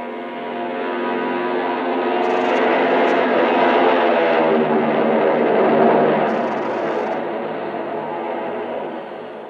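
A propeller airplane roars through takeoff and heads east. Its heavy engine drone swells steadily louder, peaks, then eases slightly as it climbs away. The thick, continuous rumble has a throbbing tone and no voices.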